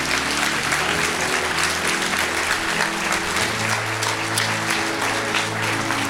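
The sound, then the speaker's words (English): An audience claps steadily for about six seconds, giving applause to Jesus, a dense and fairly loud wash of applause that never lets up, with faint low sustained tones humming underneath. “So would you just clap to Jesus for Dean?”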